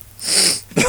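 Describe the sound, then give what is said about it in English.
A single loud nasal sniff with a breathy hiss lasting about half a second, done as an imitation of Hillary Clinton's debate sniffs, followed by an abrupt vocal burst at the end. “you do the sniffs.”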